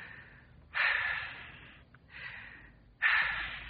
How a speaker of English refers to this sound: Take two deep breaths. Why, I'm breathing all right. Take them. Oh, all right.